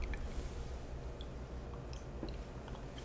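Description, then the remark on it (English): Beer pours steadily into a glass with a soft, continuous liquid rush, faint fizzing and a few small clicks and drips, fairly quiet, with no talking. “Look at this beautiful pour.”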